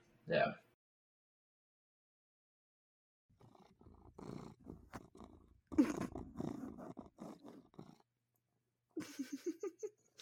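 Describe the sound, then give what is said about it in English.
A cat purrs in a steady, rhythmic rumble near the end, after a brief loud burst and some indistinct vocal sounds in the middle. “Did I get the purring?”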